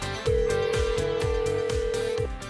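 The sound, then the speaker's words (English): A phone line rings with one long, steady two-second tone as a call is placed to a woman, set over a thumping bass beat that pulses about twice a second. No one speaks. “We are going to call her up here”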